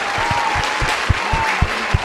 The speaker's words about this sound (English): A round of applause for that. Yeah, round of applause.